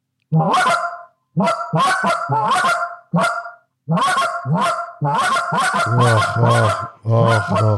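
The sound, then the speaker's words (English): A goose call blown in a series of loud, sharp clucks, some single and some in quick doubled pairs, with short pauses between bursts and no talking. “We have a cluck. Hit a cluck real quick, brother. Okay, double cluck.”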